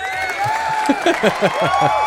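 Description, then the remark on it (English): An audience applauds and cheers, with sustained high whoops and shouting voices layered together at a steady, moderately loud level for a couple of seconds. “So hey, give a round of applause for my dad for taking another shot in the throat.”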